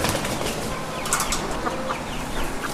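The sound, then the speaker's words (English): A crowded flock of chickens and roosters at a halal poultry slaughterhouse at 94th Avenue and 100th Street, holding about 150 birds, clucks steadily, a dense, busy chatter with a few brief flurries that sound like wings flapping. Nobody speaks. “And the roosters, well, they look the meanest.”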